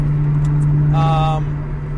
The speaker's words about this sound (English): I can only talk from my car on the way home while I drive. So you may hear some road noise. You may hear some honking.